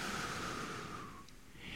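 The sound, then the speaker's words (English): An airy breath drawn in as part of a simple stress test, a brief hushed pause, then the soft rush of an exhale beginning, with no voices. “Take this simple stress test with me this morning. Breathe in, hold, breathe out.”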